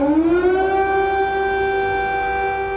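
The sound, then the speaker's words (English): An air raid warning siren wails loudly in Kyiv, Ukraine, during Russia's full-scale invasion, its pitch climbing at first and then holding a steady, droning tone with a rich, buzzy harmonic layer. No one speaks. “So that's what residents in the Ukrainian capital of Kiev have been hearing, air raid warnings ringing out and missiles hitting key military targets like this airport in the west of the country.”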